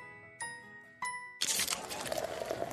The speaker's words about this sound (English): Do you hear that Coors Light being poured? It's the perfect temperature. How can I tell just based on the sound? I can't.